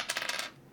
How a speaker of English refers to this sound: Who are we going to start with? I'm going to roll a d6.